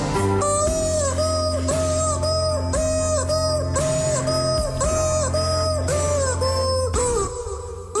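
An inflatable rubber chicken, squeezed by a man pushing air in and out of it, squawks out a slow, sustained melody, its wailing notes gliding between pitches over a loud, steady band backing with bass and drums.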